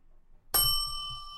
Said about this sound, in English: What was that? I wanted to ding the bell. Oh, okay. You can ring the bell if the Brewers hit a home run.